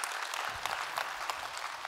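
A church audience applauds the collection of 47 turkeys for Thanksgiving, a dense, steady wash of many hands clapping at once that holds evenly for the full two seconds without fading.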